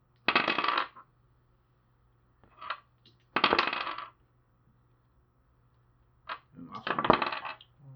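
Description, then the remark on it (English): Dice are rolled for saving throws, clattering across a hard surface in several quick bursts of bright rattling rolls with short pauses between them, over a faint low steady hum and no talking. “I'm rolling saving throws.”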